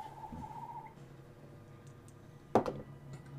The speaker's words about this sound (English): There's fucking birds in here.